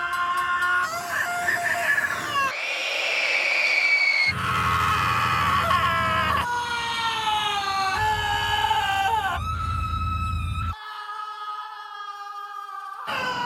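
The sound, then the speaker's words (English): A series of shrill, blaring horn tones from a passing train, cut together in abrupt segments. Each sustained, wavering wail sounds almost like screaming, with low rumbling underneath some sections. “When you take a video of a train passing by and because it's around other things, it'll blare its horn.”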